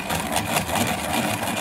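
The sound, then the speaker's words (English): An automatic electric pencil sharpener runs with a steady, buzzing motor whir and gritty grinding, holding an even loudness for about a second and a half with no voices. “Or this one. Automatic sharpener.”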